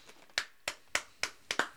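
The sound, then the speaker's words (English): Several sharp hand claps, about six, at a fairly steady pace with the last two coming quickly together, clapping for the Lucasfilm logo at the start of a Star Wars film. Each clap is crisp and bright and fades quickly, with no voices between them. “Got to clap for it. You got to clap for it.”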